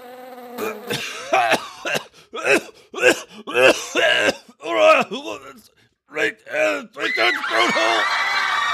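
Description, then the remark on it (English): A man sputters through a run of loud, choking coughs and gagging hacks in uneven bursts after inhaling a gnat, trailing off into a hoarse, raspy wheeze at the end. “All the people in line flee in terror at his cough.”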